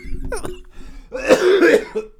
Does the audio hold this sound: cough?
yes